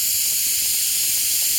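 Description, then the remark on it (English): A loud, steady hiss of a pointed blue torch flame drilling a hole through a slab of gray granite in a basement lab at MIT, boring about 1 inch deep in 30 seconds, continuous, with faint little crackles and snaps from the stone breaking through now and then. “And he's doing so with a pointed blue flame that's making the gray stone snap, crackle, and pop.”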